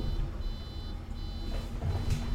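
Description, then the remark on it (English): High-pitched electronic beeping from a fridge door-open alarm, repeating in short bursts over a low, steady rumbling background. No one speaks. “Nothing's worse than, especially if it's your freezer being open.”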